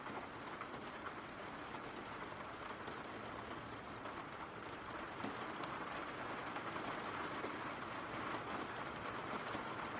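Steady rain falls without pause, a dense, even hiss spread across high and low tones with soft patter throughout and no voices or changes in loudness.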